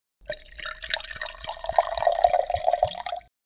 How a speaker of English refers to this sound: Pull out, as Crowley settles into the couch, and Xerophil comes round to join him. He pours glasses for them.